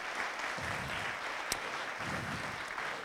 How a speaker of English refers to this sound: Could I have everybody from CoVenture stand up for a minute? Those volunteers and people who are here, are please give them a round of applause. Thank you.